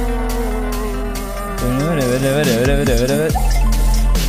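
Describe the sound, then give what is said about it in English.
Music with bubbly, water-drop-like synth plucks sliding up and down in pitch over sustained tones and a steady low bass. The plucks play loud and continuously, with no voices. “It's like that water drop sound.”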